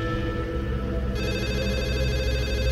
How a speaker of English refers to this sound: And that's when the phone rings. Not mine, not the one I have in my hand, but the landline phone. I snatch it up.